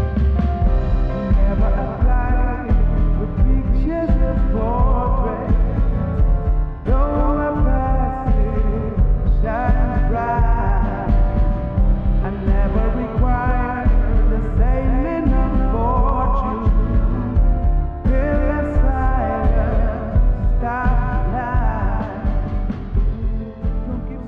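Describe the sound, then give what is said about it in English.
Live music through a PA system in a venue, heard on stage without monitors, sounds boomy and muddy, with heavy low end, dulled highs and a slight echo from sound bouncing off the venue's rear wall, playing loudly and continuously with no talking. “There's an emphasized bass, de-emphasized upper frequencies, and you'll also hear a little bit of delay or echo from the sonic reflections in the venue.”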